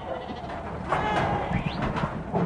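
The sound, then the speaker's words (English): Several black-faced sheep bleat while being dagged on a 2,000-acre family farm in the Wairarapa hill country, overlapping cries rising and falling over a steady rustle of farmyard noise, with a brief rising squeak partway through. “dagging a small run of black-faced sheep at the 2,000-acre family farm in the Wairarapa Hill Country.”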